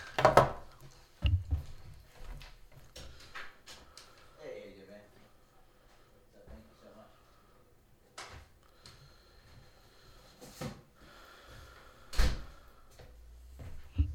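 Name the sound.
knock on the door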